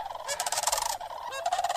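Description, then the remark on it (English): Loud, rattling bugle-like calls of sandhill cranes flying overhead on migration, several birds trilling together in overlapping bursts, in the San Pete Valley west of Ephraim, Utah, with no talking. “And those obviously were Sandhill Cranes flying right over.”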